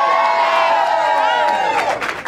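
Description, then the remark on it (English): At an election event, a large crowd cheers loudly and continuously in response to being asked who voted for Donald Trump in 2020, voices blending into a roaring wash with high shouts and whoops rising above it, then starting to break up and fade toward the end. “This is a good crowd. I like this energy.”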